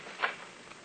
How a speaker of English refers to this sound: I hid behind a door on the lower floor and waited. And soon I heard the upstairs door open.